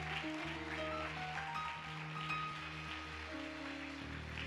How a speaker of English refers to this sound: Clap your hands right here. Clap your hands right here.